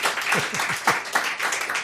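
A brief round of applause: a dense, steady patter of many hands clapping, with a few sharper, louder claps popping out every fraction of a second, at moderate volume throughout.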